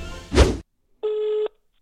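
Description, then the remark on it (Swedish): A telephone being dialed: a brief muffled clunk, then a short pause and a single steady electronic phone tone lasting about half a second, clear, with no voices. “Ja hörni, det har återigen blivit dags att ringa upp min vän”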